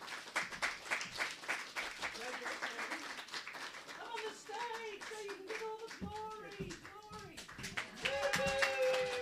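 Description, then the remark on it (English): An audience at the Cicada Story Slam in Dalesford, a country town in Victoria, claps steadily in a dense, sustained round of applause; partway through, voices join in with whoops and calls over the clapping, which carries on to the end. “if you'd like to come up so we can give you a round of applause, these were their favourite stories tonight.”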